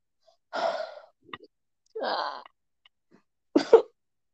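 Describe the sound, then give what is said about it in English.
Three harsh, forceful coughs from a person with acute bronchitis, spaced about a second apart with short pauses between, the last one sharp and loud; nobody speaks. “Like some of these coughs make me cough so hard.”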